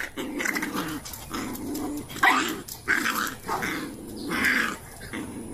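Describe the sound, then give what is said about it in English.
Dogs growl and snarl continuously, broken by several sharp barks and yips as they scuffle in a rough, chaotic tussle, with no voices. “Why is this fascinating to me? Because you like dogs. And chaos.”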